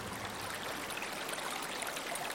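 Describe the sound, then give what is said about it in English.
Gently flowing pond water trickles and burbles steadily, a continuous soft wash with small bright splashes, fairly quiet, with no voices. “The water bobs brighter.”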